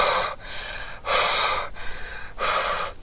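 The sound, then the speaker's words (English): Heavy, deliberate breathing by a workout instructor: three loud, airy breaths, each lasting about half a second, in a slow, steady rhythm with brief quiet gaps between them. No one speaks. “That probably sounds ridiculously creepy, me breathing like that.”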